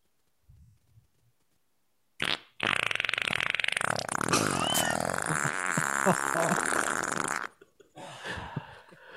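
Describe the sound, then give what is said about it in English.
A long, loud, sputtering fart from a man, made for someone as a dedication, rasps for about five seconds, buzzy with rippling flutters, set between brief quiet moments of faint low murmuring. “And he'll fart for people.”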